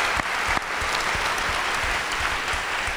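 An audience claps steadily, a dense wash of many hands with sharper individual claps popping through, holding at an even loudness with no voices.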